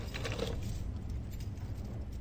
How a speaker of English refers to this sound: The top is a metal door that Hollis opens with a key.